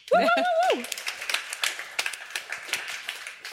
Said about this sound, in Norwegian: Nei, liten applaus for det.